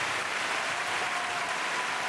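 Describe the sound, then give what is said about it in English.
Steady applause from a crowd, a dense continuous patter of many hands clapping at once, fairly loud and even throughout, with no voices standing out. “Clapping, you cocksucker.”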